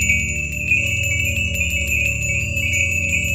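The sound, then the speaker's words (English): Handheld bells shaken hard and fast by a witch doctor, a dense, continuous ringing with rapid metallic strikes over a steady low rumble, loud for the whole stretch, with no voices. “The witch doctor immediately held up some bells in her hand and shook them violently.”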